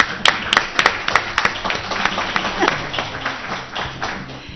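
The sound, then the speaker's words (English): An audience at a live road show event claps steadily, a dense patter of many hands with a few sharper claps standing out, holding at a fairly even loudness throughout without any voices. “And you guys deserve applause for everything you do.”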